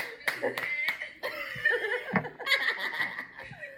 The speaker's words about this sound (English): Welcome, clap. You can get a clap for showing up.